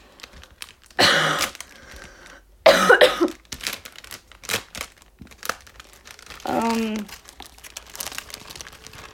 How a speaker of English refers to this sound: Okay, so we'll pick this up. I'm putting away the plastic bags now.